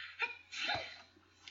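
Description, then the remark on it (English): One sneeze: a quick breathy intake, then a sharp, hissy burst that trails off into quiet breath. No talking around it. “Lying, sneeze. Truth, laugh. Lie, sneeze.”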